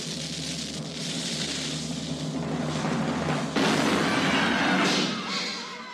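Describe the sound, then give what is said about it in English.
A cannon-fire sound effect: a loud, rumbling, noisy blast that swells into a harsh crackling crash about halfway through, then fades slightly. No voices. “Throw the baby out with the bathwater in this instance. Fire the cannon.”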